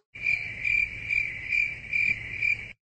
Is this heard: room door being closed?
no